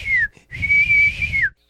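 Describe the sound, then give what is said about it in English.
A breathy, hollow whistle like air blown across the top of a Coke bottle: a short tone, a brief pause, then a longer steady one that dips in pitch at the end, fairly loud. “it whistles like blown across the top of a Coke bottle.”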